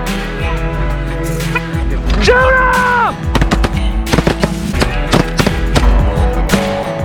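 Sharp shotgun blasts crack out one after another over a dense, noisy outdoor background, with a brief wavering tonal call partway through and a flurry of closely spaced shots toward the end.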